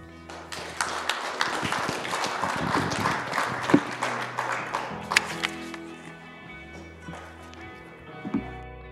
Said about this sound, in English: can we have another round of applause for Pastor Merlin this morning?